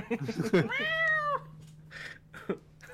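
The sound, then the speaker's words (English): A male cat sitting outside a door lets out one long, drawn-out meow that rises and then falls, clear and fairly loud, with brief bits of human voice just before and after it. “Cat's trying to give. Yeah, he's sitting there. Outside the door.”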